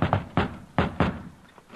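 Four solid knocks by a high school boy on the wooden front door of a girl's house, fairly loud, landing in two uneven pairs with a short pause between them and no voices.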